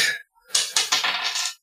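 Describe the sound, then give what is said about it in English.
Dice clatter across a hard tabletop in a quick run of sharp, bright clicks and rattles, fairly loud, with no voices. “Roll that dice.”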